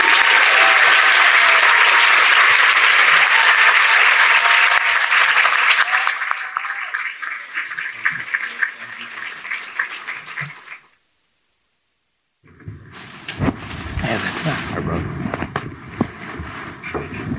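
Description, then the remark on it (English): A crowd breaks into loud, dense applause for panelists and a moderator as they come up, holding steady for several seconds, then thinning into scattered claps and fading. A brief silence follows before another burst of clapping and crowd noise. “Let's give them a loud round of applause.”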